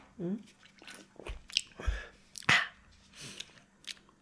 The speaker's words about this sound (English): I haven't finished either. I've been very delicately sipping it. These every sip packs a punch.